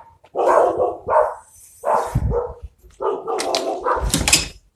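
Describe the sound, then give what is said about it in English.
Dogs bark back and forth in a loud, irregular volley of about five harsh, mid-pitched barks and yelps, some running together, with no one talking. “that's why you hear the dogs in the background. They're always barking back and forth for no reason”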